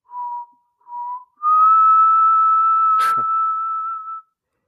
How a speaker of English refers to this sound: Are you actually whistling that? Because that is excellent whistling. Whistle, man. It's pre-recorded.